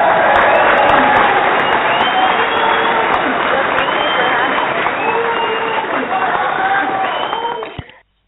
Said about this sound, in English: I want to give you a round of applause. I want to thank you for coming on.